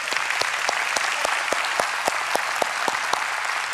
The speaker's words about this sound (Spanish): Y creo que todos los papás merecen un fuerte aplauso.